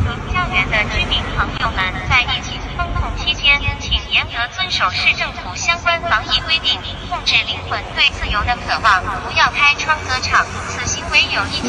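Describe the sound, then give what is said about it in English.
A loud, amplified voice speaks continuously from a loudspeaker on a drone flying over Shanghai, warning people to wear masks and follow protocols, slightly harsh and echoing, over a steady whirring drone hum, with faint street noise beneath. “This is from the sky, from a drone in the sky with the amplified voice large enough that the millions of people in Shanghai can hear this.”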